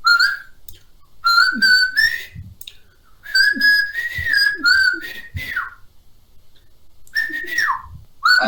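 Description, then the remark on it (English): Someone whistles a bouncy little theme tune in several short phrases separated by brief pauses, with sliding pitches and no talking. “It was just whistling. That's all it was.”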